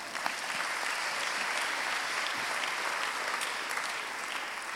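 An audience claps steadily in a sustained round of applause, a dense crackle of many hands at an even loudness for the full length, with no voices standing out.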